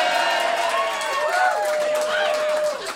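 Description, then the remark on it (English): A large audience boos loudly and continuously, many voices merging into a sustained, droning jeer that fills the whole moment without letting up. “Wow, he gets booed. Booed. Rough crowd.”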